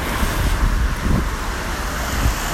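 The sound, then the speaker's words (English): Steady outdoor rain hisses while wind rushes and buffets the microphone in low, rumbling gusts as someone walks around with an umbrella, with no voices. “Yeah, it's not so good walking around here when it's raining.”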